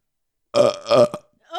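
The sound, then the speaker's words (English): A loud burp rumbles out in two drawn-out voiced pulses with a short croaky tail, followed by a brief breathy sound at the end. “We need a clean of that burp, though.”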